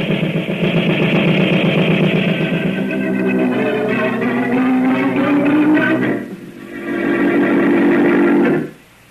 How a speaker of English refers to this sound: What's the matter? That black car coming this way. I don't like the looks of it.